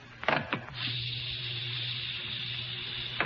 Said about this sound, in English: Very well. Let me open the door for the controller.